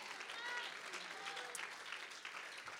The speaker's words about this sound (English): Somebody one more time give the Lord a hand clap of praise.